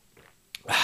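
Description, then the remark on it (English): A soft tap, then a short, breathy slurp of someone sipping coffee, a hissing draw of liquid that ends the moment. No talking. “Just need a sip of coffee before I get started.”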